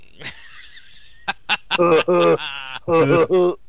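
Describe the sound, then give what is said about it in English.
A person makes a series of nasal, bleating vocal sounds in imitation of a goat, a few short bursts followed by a wavering, quavering cry, loud. “Goat.”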